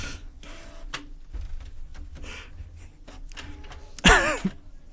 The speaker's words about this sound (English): That's a printer. That's a printer. We'll just let... Nope, let's let it... Okay, go. Okay. You guys get to listen to a printer for now. The smooth sounds of the printer. Here we go.